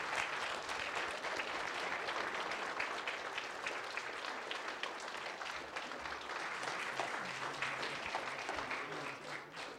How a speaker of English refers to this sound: Let's give these guys a round of applause one more time. They did a fabulous job.